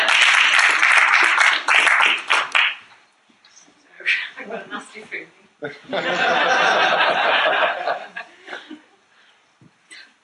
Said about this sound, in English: Round of applause.